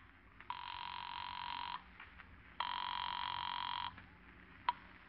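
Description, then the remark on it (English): Two long, buzzy telephone rings heard over the line, a call placed from a phone booth at the Juneau airport, each ring lasting just over a second with a pause between, followed by a couple of faint clicks. No one speaks. “It's not quite 7 o'clock when Gartland sets the little supply plane down at the Juneau airport, and you hurry to a phone booth to call Helen.”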